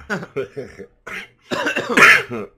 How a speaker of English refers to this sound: Jeez, this vapor's kicking my... They were both coughing now. Yeah, the vapor's kicking my ass.